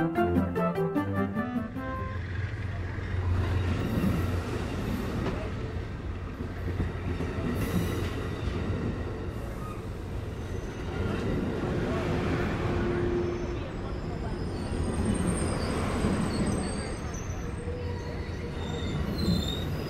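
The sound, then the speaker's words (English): Steady low rumble of a passenger car of the Coast Starlight train, travelling from San Francisco through the Cascades to Portland, USA, rolling along the rails, with occasional high wheel squeals and rattles, continuous and fairly loud throughout, with indistinct voices murmuring in the background. “On the train from San Francisco through the Cascades to Portland, Part 2.”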